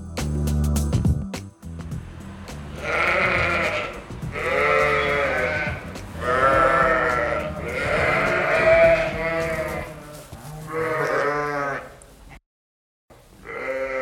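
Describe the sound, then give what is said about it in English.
Dairy sheep and goats bleat loudly on the Errington Cheese farm near Biggar in South Lanarkshire, a run of five or six long, quavering calls following one another, after a brief scuffling, clattering start. “We visited the pigs, sheep and goats before sitting down to chat all things cheese.”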